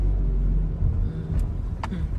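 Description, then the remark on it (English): A BMW car rolls by, its engine giving a steady, heavy low rumble throughout, with a couple of brief sharp clicks near the end. No one speaks. “That's a nice car right there. It's a very nice car. It's a BMW.”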